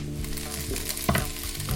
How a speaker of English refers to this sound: add the greens from your bowl. Keep frying. Okay, so now I add the noodles.